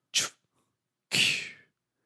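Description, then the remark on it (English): A voice imitates a tiger's chuff, a tiger's affectionate greeting, with two breathy, hissing snorts: a short sharp puff, a brief pause, then a longer, rougher exhale. No words are spoken. “If you're out in the wild and a tiger just chuffs at you, you're buddies now.”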